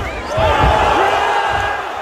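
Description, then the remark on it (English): A single heavy, muffled thud of a boxing glove hitting a fighter as he is knocked down for an eight count, set against the constant loud roar of a 10,000-seat arena crowd in Dallas with shouts rising over it. “that thud you hear is actually the glove hitting hitting Nate Diaz”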